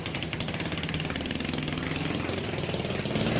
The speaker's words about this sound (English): And then David Rush, he holds the world record for popping 200 balloons with a nail in 14.7 seconds. Ready, set, go!